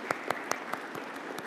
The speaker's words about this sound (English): So let's give a round of applause to our upperclassmen, juniors and seniors.